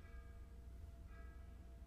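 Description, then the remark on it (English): A faint bell rings, struck twice about a second apart, its tones hanging and fading over a steady low rumble. No one speaks. “And there's a bell ringing somewhere.”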